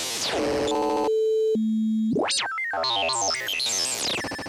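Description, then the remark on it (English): Electronic oscillator on its cyan high-frequency sine and noise setting: loud glitchy harmonic bursts, two steady pure tones, a fast upward-then-downward pitch sweep, then stepping, warbling tones. No voices. “And back to cyan, which was high frequency sine and noises.”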